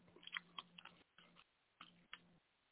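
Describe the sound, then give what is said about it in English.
Crunchy chewing of chicken wings in a few uneven bursts of crackling bites, with short pauses between them and a low steady hum underneath. No one speaks. “I love my chicken wings crunchy.”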